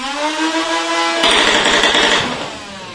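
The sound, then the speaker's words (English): A motorized full-auto foam ball blaster from the Rival line, holding 50 Rival rounds, whines as its motor spins up with a rising pitch, then bursts into a rapid full-auto stream of firing, loud for about two seconds. “Sounds like a freaking power tool when it revs up there. And of course, like I said, it's full auto.”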